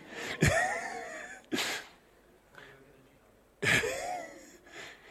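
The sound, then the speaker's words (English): Several sharp, explosive bursts of breath, like sneezes, erupt at irregular intervals, each loud onset trailing into a brief breathy tail, with quiet room noise between them. “Bless you, brother.”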